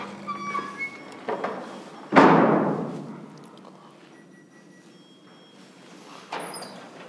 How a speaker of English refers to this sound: listen out for the annoying noise that the door makes backstage